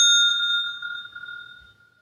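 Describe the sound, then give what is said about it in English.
A single bell strikes once with a bright, clear ding, marking the end of a one-minute argument time in a debate, then its tone rings on and slowly fades over about two seconds. Nobody speaks. “When their 1 minute is up, they'll hear a bell.”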